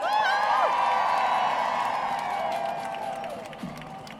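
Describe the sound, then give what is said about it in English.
A crowd applauds and cheers for the event's organisers, with steady clapping and high whoops rising over it for a few seconds before the noise gradually tapers off. “So I just want to say, can we have a round of applause for everyone that organised this?”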